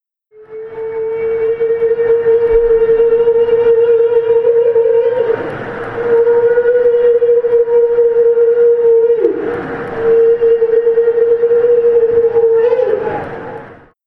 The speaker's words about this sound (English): No longer entangled, Humphrey let out a full-blown whale cry. The sound of a happy whale, Lightfin hoped.